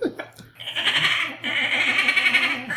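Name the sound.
voice imitating a dolphin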